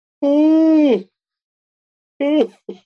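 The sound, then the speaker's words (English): Deliberate fake yawns by two people: a long, drawn-out vocal yawn with a drooping pitch, then after a pause a shorter yawning sigh and a brief trailing sound, fairly loud. “So for anyone listening right now, we can do 3 fake yawns in a row.”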